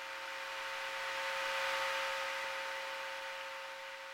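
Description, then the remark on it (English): A steady wash of hiss fills the whole clip, with faint constant tonal hum lines running through it and no speech—the empty line noise of a phone call where nobody is talking. “Just the room noise when you are on a phone with somebody and you both just stop talking.”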